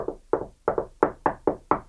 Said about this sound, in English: He didn't have to wait very long before there was a knock on the door.